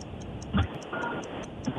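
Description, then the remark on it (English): A game timer ticks steadily in a quick, even rhythm of light, high clicks, with a couple of brief low thumps and a faint murmur underneath. “I'm going to stop the timer.”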